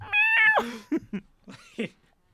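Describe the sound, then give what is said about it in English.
A very old cat lets out one drawn-out, tonal meow, followed by a few short, rough vocal bursts before it goes quiet. No one speaks. “Oh, shut up, you stupid cat.”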